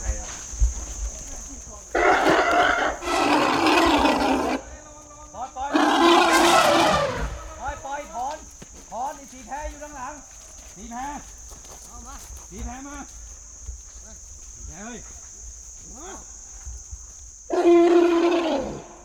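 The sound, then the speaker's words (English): A restless young elephant at a sanctuary, whose keepers try to stop him, calls out in several loud, harsh trumpeting bursts, with quieter shorter cries and voice-like calls scattered between them and a steady high whine underneath. “The keepers try their best to stop him, but there's no stopping an elephant, no matter how small.”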